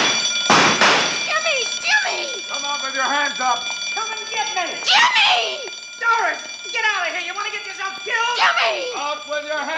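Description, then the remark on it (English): A burglar alarm bell rings continuously and loudly throughout, its steady metallic clangor running beneath excited, overlapping shouting voices. “trying to be heard over the burglar alarm.”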